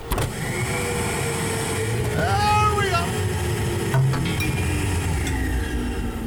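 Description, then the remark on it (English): A pneumatic tube system whooshes and whirs over a steady rumble, its pitch swelling and falling midway, followed by a couple of sharp clunks as the canister arrives; a voice speaks briefly. “You know, we just still have to live here in the bunker as I bring up the pneumatic tube.”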